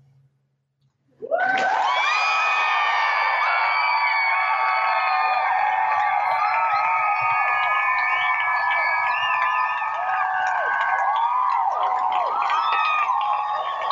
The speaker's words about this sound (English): Nothing like the applause of our adoring fans to give me a little jolt and a wake up.